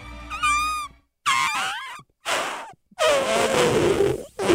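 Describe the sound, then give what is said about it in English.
A person imitates a baby elephant with their mouth, letting out four loud, squealing bursts whose high pitch wavers and slides, separated by short pauses. “An unusual noise with a my baby mouth. Elephant. Sort of a baby elephant.”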